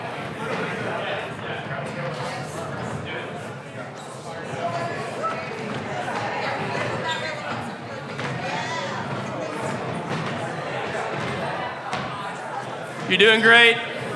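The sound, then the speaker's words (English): A group of people chatter while dragging and shuffling chairs around to circle up in groups of 3 to 5, with scattered knocks and scrapes throughout and a louder clatter near the end. “Move your chairs around. Like, literally, move chairs out of the way.”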